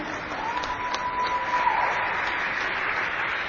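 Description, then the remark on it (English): Steady audience applause for the senior class of 2021 of the Mount St. Joseph women's basketball team at a senior night celebration: a dense wash of many hands clapping at an even level throughout, with a faint sustained tone briefly audible in the middle and no one speaking. “Another big round of applause for the Mount St. Joseph class of 2021.”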